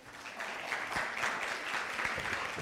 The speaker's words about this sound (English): Can we give these two a round of applause?